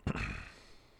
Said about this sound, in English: I don't like to clear my throat. I should pause it every time I clear my throat, right?